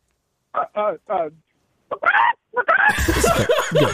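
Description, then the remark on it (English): A person imitates a chicken with a few short, clucking vocal bursts, followed by louder, noisy laughter and commotion. “Can you make like a chicken sound?”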